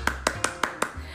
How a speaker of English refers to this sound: But for today, round of applause for me.